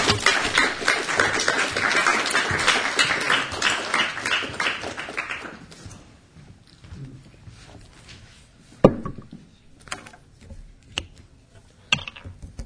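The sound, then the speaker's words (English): An audience applauds to welcome the speaker Rodrigo Toscano, with dense, overlapping clapping for about five seconds, then it quickly thins out to a few scattered claps and light knocks. “Please join me in welcoming Rodrigo Toscano.”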